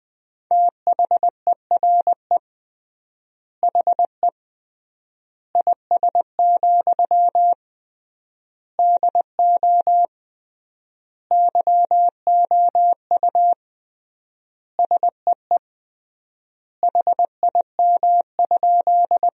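Morse code beeps at a single mid-high pitch at 20 words per minute with triple word spacing, spelling out a sentence made from the top 100 words. Quick dots and dashes are grouped into word-length bursts separated by clear pauses. No voices.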